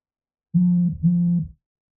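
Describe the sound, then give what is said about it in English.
Two steady electronic phone beeps sound in quick succession, each lasting about half a second with a short gap between, clear and fairly loud against silence. “Something beeped on my phone.”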